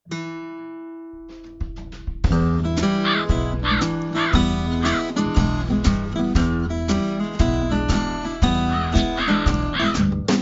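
Crow-like caws repeat in a steady rhythm over an electronic musical beat, loud and close, after a sustained opening tone; no one speaks.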